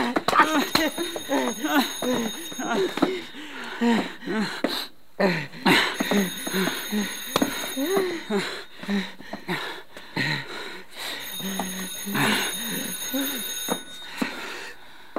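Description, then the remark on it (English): A telephone rings in three long bursts separated by pauses, a bright, steady electronic trill that stays clearly audible beneath people talking excitedly in the foreground. “You better answer the phone.”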